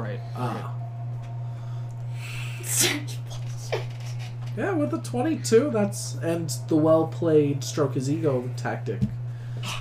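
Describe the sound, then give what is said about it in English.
A single short, sharp sneeze bursts out early on, fairly loud, then people carry on talking over a steady low electrical hum. “Bless you.”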